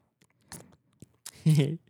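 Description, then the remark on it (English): Someone imitates loud chewing right into a microphone: a few wet, smacking mouth noises, then a short voiced groan, all fairly loud. “That's how you'd be chewing.”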